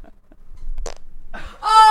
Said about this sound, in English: so what I do on a date with when I'm dating women and they fart before me, I try to fart immediately to make them feel less uncomfortable.